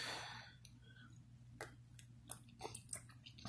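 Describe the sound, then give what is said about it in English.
A breathy slurp as someone sips hot triple chocolate flavored coffee with vanilla, cream and sugar, followed by soft mouth clicks and swallowing noises over a low, steady background hum. “Hold on, let me get one more sip.”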